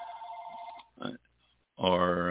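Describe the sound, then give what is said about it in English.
A telephone rings with a steady, buzzy electronic tone that cuts off after a moment, followed by a short burst of sound, a pause, and then a loud voice. “Somebody's calling.”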